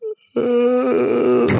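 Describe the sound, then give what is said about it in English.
A single drawn-out, voiced yawn, fairly loud, sliding gently in pitch and ending in a breathy exhale. A brief short vocal sound comes just before it. “As you yawn.”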